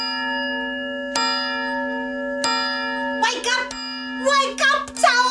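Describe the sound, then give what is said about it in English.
A large, newly polished tower bell, rung by the mayor pulling its bell rope after the tower was rebuilt, tolls in slow, evenly spaced strikes. Its deep tone rings on without fading; after a few strokes, excited voices begin shouting over the lingering hum. “Then the mayor took hold of Tower's bell rope and gave it the biggest tug.”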